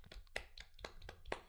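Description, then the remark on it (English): Soft hand claps, about six of them at a slow, slightly uneven pace, each a quick sharp slap over a low, faint background hum, with no voices. “Soft clap in the background.”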